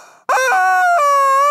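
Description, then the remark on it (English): A rubber chicken named Edwina, used as a lightning round notification, lets out a loud, nasal squawk from air passing through a diaphragm. The squawk starts abruptly and holds for over a second, its buzzy pitch stepping down a couple of times before trailing off. “She's a rubber chicken.”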